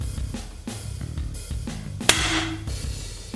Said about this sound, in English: So you can see it got stopped by the arrow holder. So that's what an anti-dry fire does.